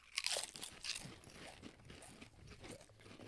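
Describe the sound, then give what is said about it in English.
Loud crunching as a crispy, very hot chip, hotter than habanero, is bitten right against the microphone: a couple of sharp bursts early on, then steady chewing crunches. “Crunch in the mic.”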